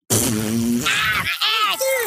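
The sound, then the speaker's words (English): A cartoon schoolboy farts: a loud, low, buzzy fart sound rumbles for under a second, followed right away by higher-pitched voiced whoops or laughter, all loud. “And then Cartman laughs, hey. And then he farts.”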